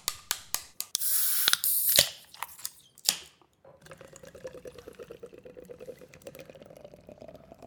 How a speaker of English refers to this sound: Let's crack open the Guinness.